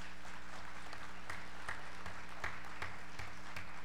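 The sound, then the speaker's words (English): Steady applause from an audience clapping for themselves after being thanked for volunteering for security, many hands clapping in a dense, continuous patter with a few sharper claps standing out, no voices over it. “Did you just clap for yourselves?”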